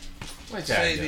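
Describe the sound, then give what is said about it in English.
A dog, one of the dogs just let in during a recording, whimpers and yips in short, high, wavering whines, fairly loud, rising in the second half after a quieter start with a soft thump. “She just let the dogs in the show.”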